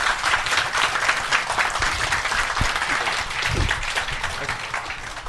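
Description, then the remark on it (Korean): Sustained audience applause at the end of a lecture on quantum mechanics, a dense wash of many hands clapping steadily and loudly for about five seconds, with no one speaking over it. “네, 정말 큰 박수 보내주세요.”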